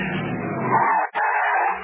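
A car speeds past with tires skidding, a loud, sustained screech that dips briefly in the middle, then resumes.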